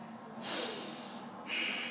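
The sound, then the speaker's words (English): A loud nasal sniff draws in for about a second, then a second sharp sniff follows right after, both breathy with no talking around them. “The sniff is everything.”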